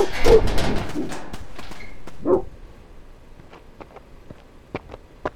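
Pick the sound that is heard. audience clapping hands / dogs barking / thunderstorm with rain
dogs barking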